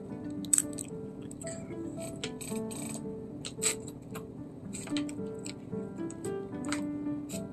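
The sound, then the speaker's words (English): Someone gulps water, with a series of wet swallowing clicks and mouth sounds at an irregular pace over several seconds. Nobody speaks. “I'm going to get some water in my system.”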